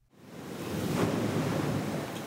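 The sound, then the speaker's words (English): Caribbean Sea surf washes in steadily at the coastal city of La Ceiba, Honduras, a broad, rushing roar that swells up quickly from near silence and holds at a fairly loud level, with a faint breezy hiss and no voices. “The Galvez family is sitting down to breakfast, wearing their Sunday best, looking out at the Caribbean Sea.”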